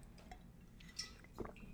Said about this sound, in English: I need to take some water. Oof, lads.